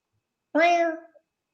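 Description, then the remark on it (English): A single drawn-out meow from a cat on a trampoline, fairly loud, with a steady, slightly falling tone. It lasts under a second and is otherwise surrounded by silence. “And you get a cat on the trampoline.”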